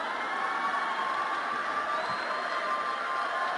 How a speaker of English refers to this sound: Listen to the cheers of that.